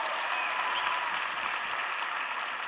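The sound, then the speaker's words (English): Sustained applause from an audience clapping for a man who has stood up, a dense, steady wash of many hands clapping at a constant loud level throughout, with no pauses or voices standing out. “Let's clap it up for him.”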